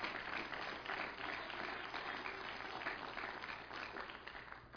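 A crowd claps steadily throughout as a hand clap of praise to the Lord, a dense, sustained wash of many hands with no single claps standing out, at a moderate, even loudness.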